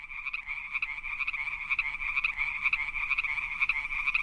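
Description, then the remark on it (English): A steady chorus of chirping crickets inserted as a sound effect, a continuous high trill with a fast pulsing rhythm, moderately loud and unbroken throughout, with no voices. “I'm just going to insert crickets here.”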